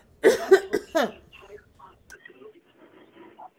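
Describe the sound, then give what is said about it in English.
A quick burst of three or four harsh coughs in rapid succession, followed by a few seconds of faint, low murmuring sounds in the background. “I have to cough a little bit.”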